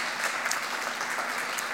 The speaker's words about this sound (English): And you can give the Lord a hand clap for that.